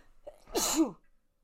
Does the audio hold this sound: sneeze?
yes